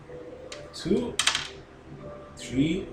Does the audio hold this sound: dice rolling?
yes